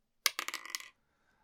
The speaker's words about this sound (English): Let's roll some dice.